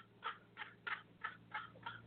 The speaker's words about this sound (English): This bird is laughing.